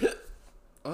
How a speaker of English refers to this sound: Oh my god, hiccups.